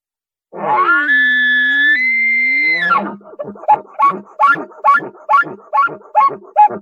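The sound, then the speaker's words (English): An elk locator bugle blown on a bugle tube with a reed held in the mouth, imitating a bull elk: a loud, sustained, reedy whistle lasting a few seconds, then about nine rhythmic grunting chuckles in quick succession, with no talking. “I have a bugle tube and a reed. I stick the reed in my mouth, and I can adjust the sound by my tongue pressure. I'm going to do a locator bugle.”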